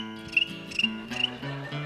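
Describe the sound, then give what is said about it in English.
Crickets chirp in short, high, regular bursts about every half second, with a steady shrill trill beneath. Sustained low musical tones play throughout and shift pitch partway through. “And look, Ranger Doug, in the back of the Johnson, in the back of the portrait, there's silent purple hills. Except for the crickets.”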